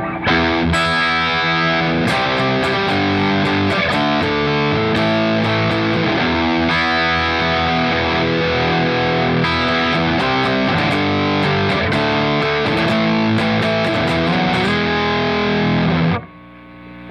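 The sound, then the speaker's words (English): A mildly overdriven electric guitar plays a steady run of chords and notes for about sixteen seconds, loud and sustained, with a light crunchy low-gain amp tone, then stops abruptly. “So this is the low gain option.”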